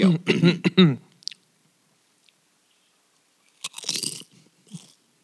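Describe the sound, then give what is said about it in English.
Loud, sharp crunching bursts of someone biting into a potato chip, not Lay's, in front of a microphone, a quick cluster at first, then a pause and a second burst of crisp crunches with chewing. “in the microphone, take that's your chip. Out, like, eat it.”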